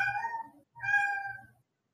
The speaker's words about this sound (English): Is your cat dying? It's my cat.